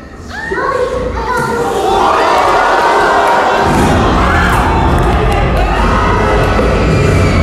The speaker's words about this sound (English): So the first thing you're wondering is if this movie brings the scares. Well, it had two major gasps from the crowd that were pretty loud. Here's how one of those gasps sounded.